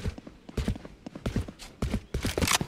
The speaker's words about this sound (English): Yep, I hear footsteps A.